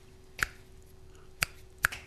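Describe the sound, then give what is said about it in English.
Three sharp finger snaps ring out, spaced unevenly with a long pause after the first and two quicker ones at the end, each a bright crisp click over faint background hum. “You snapped your fingers.”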